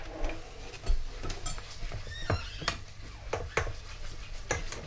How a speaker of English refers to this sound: I don't know if you can hear that, but just kind of coating the chicken and making a bit of a mess of it.